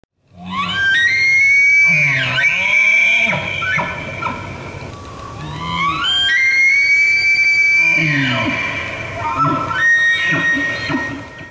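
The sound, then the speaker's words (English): Elk bugling: three loud, high-pitched whistling calls that rise, hold and slide back down, overlapping one another, with lower grunting tones underneath. “And when you're good, you can actually start to get calls back and forth. Like you can exchange these calls and it's really cool.”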